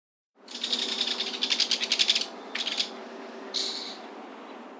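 A belted kingfisher gives a harsh, grating scream call, a call signalling that the bird is not going to attack: a long buzzy rattling stretch followed by two shorter raspy bursts, high-pitched and fairly loud, with no other sounds.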